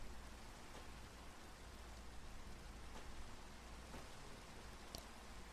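Steady rain falls in a dense, even hiss with a low rumble underneath, occasional faint drops or ticks standing out briefly, and no voices.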